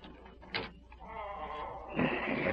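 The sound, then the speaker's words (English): The door of a small cottage creaks open as a masked intruder sneaks in at night. Its hinges give a long, drawn-out, whining groan that turns louder and rougher toward the end, after a couple of brief scraping knocks. No one speaks. “Doggone door. Worse than a door in a barn.”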